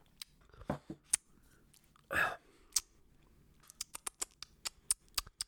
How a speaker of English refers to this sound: So let's have our first sip of this drink that we will be drinking for the rest of the saga, because I paid for the whole bottle.